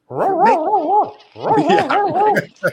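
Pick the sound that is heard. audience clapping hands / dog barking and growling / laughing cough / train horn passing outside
dog barking and growling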